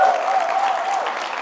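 An audience claps steadily, a dense, even wash of many hands applauding at a constant loud level with no pauses, the crowd's clatter filling the whole moment.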